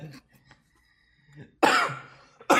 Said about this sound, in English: I don't know why I'm coughing all of a sudden. Maybe it's because of this Miller Lite I'm drinking.